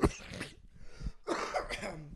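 A close, loud cough bursts out at the start, then after a brief quieter pause a second rough, raspy cough follows, trailing off with a throaty clearing sound.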